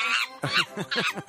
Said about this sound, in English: Is it a monkey? That's just... No, it's a chimpanzee. Oh. You need to get your simian straight.